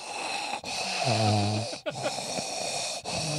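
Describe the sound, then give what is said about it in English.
A voice imitates the TV character Donna, played by Tori Spelling, with heavy, raspy mouth breathing: three or four loud breaths with a throaty, snore-like rattle, separated by short pauses. “She's just breathing out of her mouth.”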